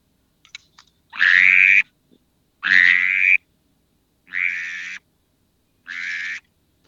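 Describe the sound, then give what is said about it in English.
Four drake whistle calls imitating drake ducks, blown lightly into a duck call with a hand cupped around its end; each a short, reedy, rising whistle, one after another with even pauses between them, fairly loud with no talking. “And that's a drake whistle, and that's, you know, how drakes sound, and a lot of times that will decoy birds really well.”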